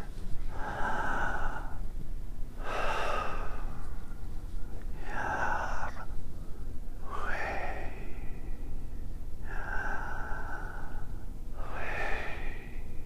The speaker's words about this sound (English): It's a natural sound your body makes when it's breathing, especially if you're a mouth breather. And it's actually his name.